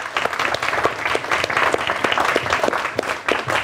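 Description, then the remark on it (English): An audience at a property investing event claps steadily to welcome a speaker on crowdfunding, a dense, loud wash of many hands with sharp individual claps poking through, sustained without a break for several seconds. “So without further ado, I'd like to ask you to give a massive round of applause”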